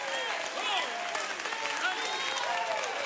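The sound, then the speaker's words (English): An audience at a church service claps hands in praise of God in a dense, steady wash of applause that holds for the whole stretch, with overlapping voices calling out and rising through the clapping. “You got to get in the flow and clap your hands and rejoice with him.”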